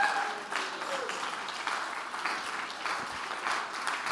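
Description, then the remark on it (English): A large church audience at a revival service stands and claps steadily and continuously, a dense wash of applause with voices shouting and cheering mixed in, filling the room at a moderate, sustained level throughout. “Let's all stand our feet and clap our hands and shout, there's victory in the room.”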